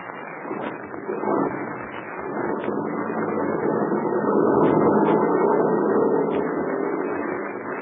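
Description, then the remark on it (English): A heavy truck engine is started and rumbles steadily, its low growl swelling louder over several seconds as the truck pulls away from a headquarters down a narrow mountain road, then easing slightly toward the end. No voices are heard. “The heavy truck was started. It pulled away from the headquarters of the red-whiskered Captain Blaze”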